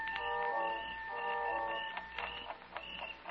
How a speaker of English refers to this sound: The sound of the alarm clock we brought with us mingled with that of the crickets outside.